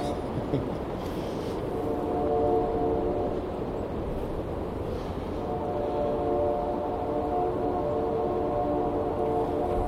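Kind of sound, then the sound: vehicle, train whistle blowing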